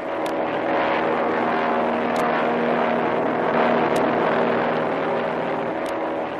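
A steady, droning airplane engine hums without pause as the plane drops 1,000 feet to fly low over a calm sea, circling the area where a storm struck the ship Manila Merchant. Its low tonal roar holds even in loudness throughout, with a few faint, sharp ticks recurring every couple of seconds.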